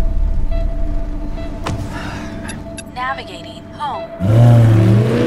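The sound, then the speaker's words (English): A car engine rumbles low throughout, then near the end it revs up loudly and accelerates with a strong, throaty surge. Brief voices come and go over the engine noise. “That's a beautiful car, sir.”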